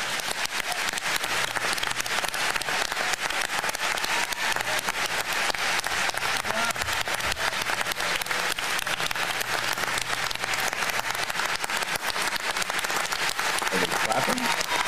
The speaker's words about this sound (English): They are clapping.